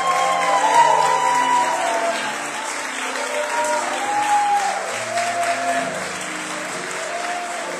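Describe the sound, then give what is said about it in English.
A crowd at a celebration applauds former U.S. Senator Barbara Boxer steadily for several seconds, a dense wash of clapping with a few cheers and faint voices mixed in, holding at an even loudness throughout. “Can you all just wave and give Barbara Boxer a big round of applause?”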